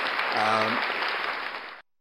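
A dense wash of applause from a crowd, steady and fairly loud for about two seconds before cutting off abruptly, with a brief vocal cheer rising over it early on.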